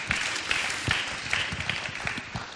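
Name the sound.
audience applauding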